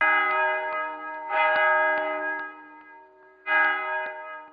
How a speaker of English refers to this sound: I go, and it is done. The bell invites me. Hit it not, Duncan, for it is a knell that summons thee to heaven or to hell.